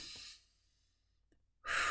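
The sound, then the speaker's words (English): Airy breathing with no talking: a breath trails off into near silence, then after a pause a loud, rushing deep breath begins, deep in-and-out breathing done to calm down. “That deep in, deep out breathing calmed my heart rate, helped my mind to think better, gave my body the oxygen it needed, helped all my systems to come back to normal again so that I could think more clearly.”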